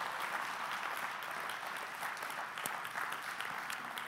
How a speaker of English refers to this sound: Nobody claps alone in this church. Come on. You're a giant killer. We just clap that in together.